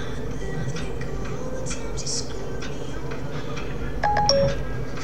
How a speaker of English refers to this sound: Is your phone ringing, dude? I don't think so. Nah, I got it on mute.